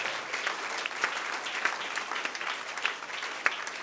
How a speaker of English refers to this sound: Give the Lord a big clap offering here.